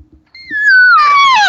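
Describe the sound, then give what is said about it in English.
A single whiny, nasal imitated cow elk call, like an annoyed cow, made with a call or voice, sliding downward in pitch and growing louder and raspier toward the end, clear with no talking. “And then all of a sudden you can throw out like maybe just one little whiny sound.”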